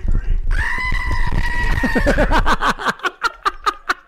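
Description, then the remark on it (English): A goat named Scream lets out a loud, human-like scream held for about two seconds, then breaks into a rapid stuttering series of short bleats that trail off. “It's just a goat.”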